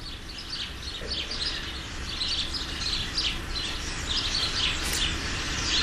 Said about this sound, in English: Birds. They sense the presence of the seeds. In 2 months, the main bird migration will start.